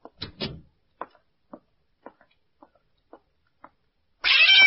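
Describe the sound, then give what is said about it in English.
A couple of sharp knocks give way to soft, evenly spaced taps, then Susie the cat suddenly lets out a loud, drawn-out meow that carries to the end. “You like that cat”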